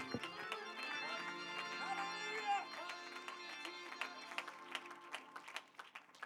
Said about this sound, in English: Now would you give God one more mighty hand clap of praise tonight?